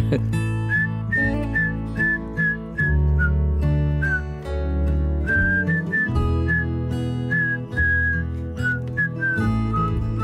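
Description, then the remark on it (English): A person whistles a cheerful melody over a steady instrumental backing, the clear whistled notes riding high above the music with a bouncy rhythm. “Hey, why don't you whistle a little bit?”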